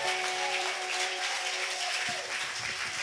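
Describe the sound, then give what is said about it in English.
A crowd claps together in sustained, dense applause as a hand clap of praise to the Lord, a steady wash of many hands that holds an even loudness for the whole stretch with no voices rising above it. “I said let's give the Lord a hand clap of praise.”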